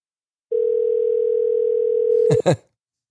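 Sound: telephone dial tone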